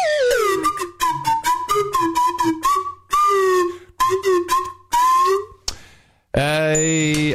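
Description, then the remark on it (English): A slide whistle toots a quick series of short, bright pitched notes with gliding bends, then a few longer swooping tones, ending in a sustained rising whine. “This is the Navy slide whistle marching band.”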